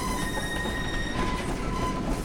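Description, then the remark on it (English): Train wheels screech against the rails, a sustained, piercing metallic squeal with several steady high whining tones over a loud, continuous rumble of rolling train noise. No one speaks. “A horrible screech of metal on metal came from below them.”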